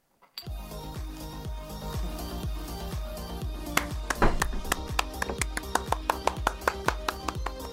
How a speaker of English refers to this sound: Was that giving yourself a round of applause there? Yeah, well, no one else was here to clap for me, so I thought I'd applause better than myself.